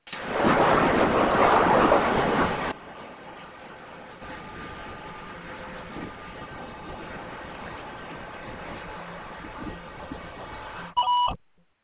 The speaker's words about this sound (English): That is the recorder that you heard that turn. you heard the two beeps, right?